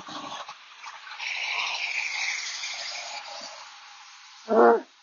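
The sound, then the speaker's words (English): A recycling truck passing outside: a steady, broad mechanical whoosh and hiss that swells and lingers, then a short, loud, groaning roar near the end. No one speaks. “Recycling truck. Sorry, you guys. I know it's annoying.”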